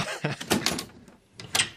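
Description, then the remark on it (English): A door onto a building's roof is opened with a rattling clatter, a couple of scraping thumps, then a brief quiet before a final clunk as it swings or settles. No one speaks. “Is there another door up here? No, this is it.”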